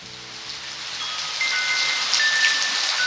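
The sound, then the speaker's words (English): Steady rain from a midnight rainstorm in California falls in a dense, even hiss, fairly loud, with scattered droplets pattering on surfaces and no voices. “We leave you this week in California during a midnight rainstorm.”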